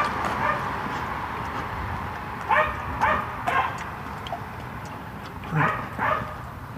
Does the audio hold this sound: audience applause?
no